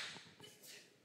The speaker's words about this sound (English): Bless you. That was perfect timing. I was like, achoo.